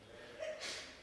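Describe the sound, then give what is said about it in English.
A single quick sneeze during a church sermon: a short voiced intake that breaks into a hissy, breathy burst, fairly soft and over in about a second. “Bless you.”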